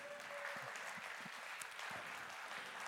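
Sparse, polite sympathy clapping: a few soft, uneven claps spread over about three seconds above a steady hiss, with no one speaking.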